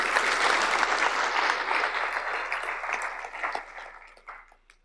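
A crowd applauds with dense, crackling clapping that holds strong at first, then thins out and fades away over about five seconds, with no voices.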